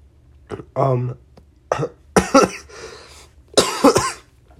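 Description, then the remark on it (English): Several harsh coughs in an irregular series, with a throat-clearing rasp between bursts and a voiced sound near the start; loud and up front against a quiet background. “There's the cough I was talking about earlier.”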